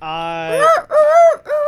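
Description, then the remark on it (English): A person imitates a rooster crowing: a steady held note, then three loud, arching voiced syllables in a cock-a-doodle-doo rhythm, delivered alone. “you wake up around the same time everybody else does to the sound of roosters outside.”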